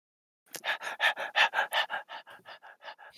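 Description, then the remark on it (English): A happy dog pants quickly and steadily, about fourteen short breathy huffs in a close, even rhythm, loud at first and then slightly softer, with no talking. “happy doggy.”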